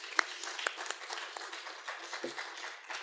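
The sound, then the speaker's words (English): A crowd gives one more round of applause for preceding presentations and acts, a dense, hissing wash of many hands clapping at once, with a few sharper individual claps standing out, holding at an even level throughout. “Can we have one more round of applause?”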